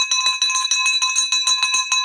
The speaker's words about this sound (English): All right, so here we have the victory bell for a huge victory